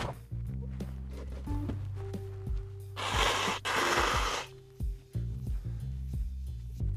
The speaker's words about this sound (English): Sorry in advance, I have to blow my nose.